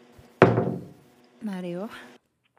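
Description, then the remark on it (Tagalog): A single heavy knock lands on a door with a short booming decay, followed a moment later by a brief voice calling out. “Ngunit, makalipas ang ilang linggo ay may kumatok sa kanyang pintuan.”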